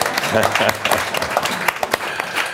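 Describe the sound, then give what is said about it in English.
A seated audience applauds in a steady, dense patter of clapping that stays fairly loud throughout, with a voice faintly audible underneath. “Notice you didn't get to your feet, but that's okay.”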